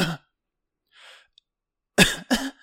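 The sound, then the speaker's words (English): A short run of coughs: one at the start, a faint breathy one after a pause, then two loud, harsh coughs in quick succession near the end. “For our new song this week, it's just going to be a series of my coughs, but in a musical fashion.”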